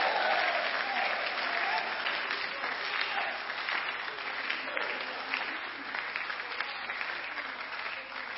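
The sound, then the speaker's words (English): An audience claps steadily for about eight seconds, a dense, even wash of many hands, loud at first and easing slightly toward the end. “I don't know why you are not clapping.”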